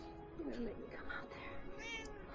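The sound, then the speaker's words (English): A cat lets out two short meows, with a steady hum of background noise and faint voices underneath. “Nope, oh, nope, it's just a teleporting cat.”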